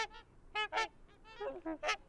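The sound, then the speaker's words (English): A series of short, brassy honking calls from trumpeter swans, several in quick staccato succession with a resonant, horn-like tone, clear with no talking. “The trumpeter's well named. It sounds like a trumpet. Resonant, brassy, staccato calls. And we're hearing them.”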